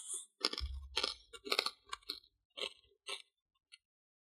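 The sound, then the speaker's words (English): Loud crunchy chewing of a baked, fatty food: a string of crisp, irregular crunches over a few seconds, with low thuds underneath, tapering off into a few softer bites at the end. No talking. “It's so loud chewing, I can't hear myself think.”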